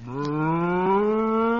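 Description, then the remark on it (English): A single long, steady cow moo, loud, its low tone rising slightly as it stretches out for nearly two seconds with no talking over it. The cow, Bossy, is in a barn at milking time. “I've been milking this cow for 3 months, and I think I can manage.”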